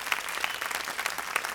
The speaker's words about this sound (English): Come on, give Lord a big hand clap if you got that point.